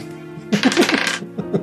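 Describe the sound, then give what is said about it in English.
Dice, rolled for a wisdom roll that lands on a 10, clatter and rattle across a hard surface for about a second, a quick burst of bright clicks, followed by a couple of softer taps as they settle, over a faint steady background tone. “Garmuth, make a wisdom roll.”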